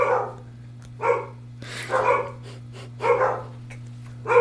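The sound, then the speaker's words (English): Several junkyard dogs bark in short, loud bursts, roughly one every second, with a steady low hum running underneath throughout. “the dogs are here! We gotta go! It's the junkyard dogs!”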